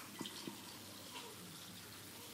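Water pours steadily into a glass in a soft, continuous stream, with a couple of small splashy clinks near the start. It is quiet, and there is no talking.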